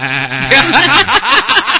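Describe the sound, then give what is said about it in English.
A sheep bleats loudly, one long quavering bleat with a shaky, wobbling pitch that fills the whole moment, no other sounds around it. “Well, I'm going to get my tape recorder and I'll sit down and I'll try contacting Dolly the Sheep.”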